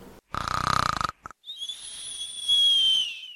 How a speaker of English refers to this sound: Snoring is a very noisy breathing while you're sleeping. Not everybody snores, but sometimes when people sleep, they snore. And it can be really hard for another person to sleep next to them.